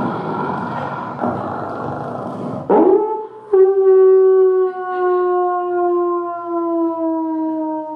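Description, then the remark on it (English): A person imitates a werewolf howl: after a brief rough vocal burst, a loud, drawn-out howl holds steady and slowly slides downward in pitch for several seconds, unaccompanied. “But I thought to myself, why do werewolves only come out when it's a full moon?”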